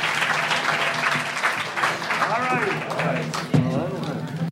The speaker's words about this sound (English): Please give a big round of applause to all of our panelists.